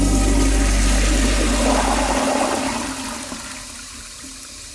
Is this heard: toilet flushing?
yes